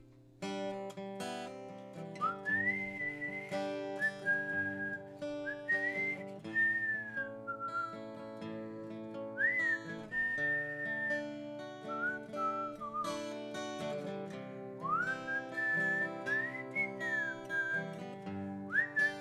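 Someone whistles a lilting song melody, clear and close, with sliding pitches and sustained notes over a steady backing of chords that plays throughout.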